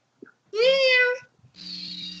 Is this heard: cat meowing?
yes